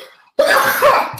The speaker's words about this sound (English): and I'm going to sneeze.